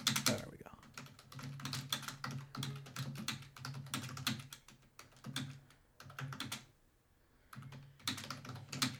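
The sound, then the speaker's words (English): Rapid, clacky keystrokes on a computer keyboard, typed in quick uneven bursts with a couple of short pauses, over a low steady hum. “Join us for the clacks. Let me just pull up. I'm typing out Mr. Hollywood.”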